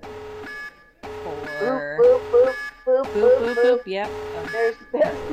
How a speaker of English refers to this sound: We don't have any feedback, so I guess at this point we shall be sounding the spoiler alarm.